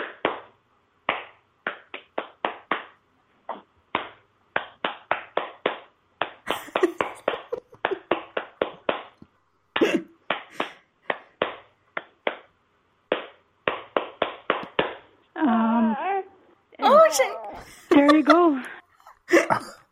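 Sharp hand claps in the Dumpty Dum rhythm, clapped to settle a baby, come in quick rhythmic bursts with brief pauses between groups, fairly loud and crisp. Toward the end, short wavering vocal-like sounds take over.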